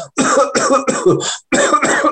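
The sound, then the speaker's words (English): A voice imitates harsh coughing and choking, several loud bursts in quick succession with a brief gap before a final pair of hacking coughs. “She screamed and she leapt about 3 feet in the air and crashed down back in the chair and started coughing and choking.”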